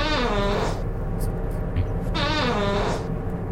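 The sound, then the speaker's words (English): Two loud, drawn-out fart sounds, each buzzy and tonal with a wavering pitch, separated by a brief pause, with a low rumble underneath throughout. “Wow, it was a double fart.”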